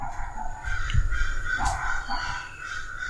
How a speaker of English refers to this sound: Now the dog is barking.